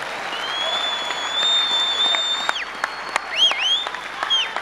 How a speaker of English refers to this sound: Clap your hands. I say, clap your hands once again.